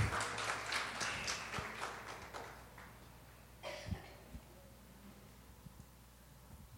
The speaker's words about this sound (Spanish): Un aplauso para nuestro hermano